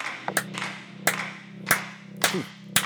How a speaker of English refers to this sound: But for now, let's get ready for our hand claps, because gosh, this is just my favorite part of the episodes now. Here we go.